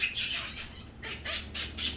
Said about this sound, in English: Baboons have a variety of calls.